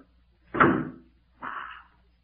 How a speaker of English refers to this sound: Wait till I close this door.